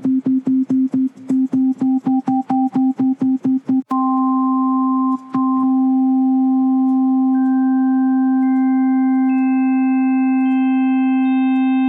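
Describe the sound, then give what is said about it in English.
A steady electronic sine tone, first pulsed in quick repeated blips, then held while higher pure tones are layered on one by one, building a brighter, richer chord-like sound. “If we just have a sine wave here, I can add harmonics here.”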